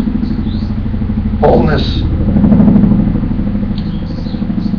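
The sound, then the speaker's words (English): A helicopter passes overhead, droning steadily with a low, pulsing rotor chop that swells slightly in the middle of the pass, while a voice briefly speaks over it. “The sound of the helicopter passing overhead is wholeness.”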